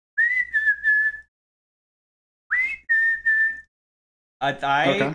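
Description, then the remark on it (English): Someone whistles an imitation of a mountain chickadee call heard in the film Session 9: two phrases of three clear, steady, fairly high whistled notes separated by a pause, then a brief stretch of talking. “I believe it's a mountain chickadee.”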